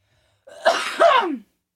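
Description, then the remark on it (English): A single loud cough in two quick rasping bursts, the second trailing off downward, heard alone with no talking. “Just woke my dog up, but coughing right now.”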